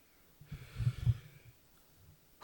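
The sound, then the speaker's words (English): A stifled, muffled sneeze: a short cluster of low, nasal snorting bursts with a faint hiss, lasting under a second, then a pause before a voice starts at the very end. “Bless you. Thank you.”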